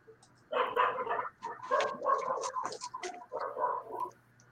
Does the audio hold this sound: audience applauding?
no